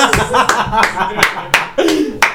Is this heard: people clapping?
yes